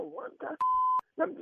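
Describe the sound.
A single steady electronic phone beep as a call is placed, clear and fairly loud, lasting under half a second, with people talking just before and just after it.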